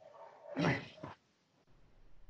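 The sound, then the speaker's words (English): A dog makes two quick, sharp vocal bursts, the first louder and longer, followed by quiet with faint background hum. “Hi, puppy.”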